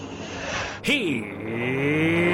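A voice imitates a NASCAR hybrid race car zipping past: a brief rising-then-falling whir, then a thin sustained hum trailing off, faint, with no engine roar.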